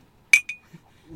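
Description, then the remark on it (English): Wine glasses clink together twice in quick succession in a toast, bright, the first strike leaving a clear ringing tone that fades over half a second in an otherwise quiet moment. “Cheers.”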